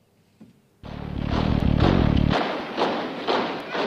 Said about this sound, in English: Marching and stomping with their marching boots with heels. Look how united the legs are when they kick out.